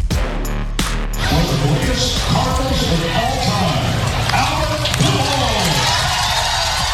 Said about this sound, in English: That was the sound yesterday as the Cardinals introduced number 5, Albert Pujols, to the spring training crowd. It was a standing ovation. The fans were all into it. The players on both sides, coaches, umpires, everybody.